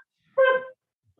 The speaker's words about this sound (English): You know this isn't scripted or staged. Yeah. Yeah, like a dog's barking.